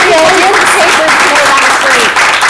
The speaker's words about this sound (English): So I'd like to thank my three guests on my panel, if everybody could give them a round of applause. And thanks to the audience.